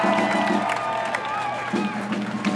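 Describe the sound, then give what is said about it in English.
A dense crowd at an abortion-rights rally on Friday night at Chicago's Federal Plaza, Adams and Dearborn, roars with overlapping shouts, screams and cheers, high voices rising and wavering above a steady wash of noise, punctuated by scattered whoops and some clapping throughout. “They gathered to scream, cry, motivate, and warn about what could be to come.”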